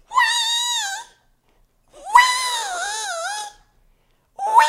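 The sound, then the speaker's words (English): A voice imitates pet cats screaming in a bedroom at 3 a.m.: two loud, drawn-out wavering yowls, the second longer, then a third cut off as it starts, with brief silences between. “You got to suffer the screaming at 3 a.m. because my cats come into my room at 3 a.m.”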